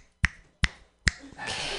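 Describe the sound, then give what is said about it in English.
Three crisp, sharp finger snaps from the audience at a comedy show ring out at a steady, unhurried pace, clear, welcoming the next comedian, then a broad wash of crowd noise swells up right after the last one. “Just clap your hands or snap your fingers for your next comedian.”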